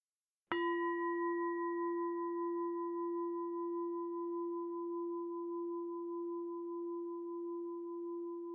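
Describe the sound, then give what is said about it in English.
One bell is struck once to end a guided practice session, and its clear, steady tone rings on, sustaining for several seconds with only a slow fade. No one speaks over it. “And when you hear the bells, gently open your eyes and bring yourself back to the room.”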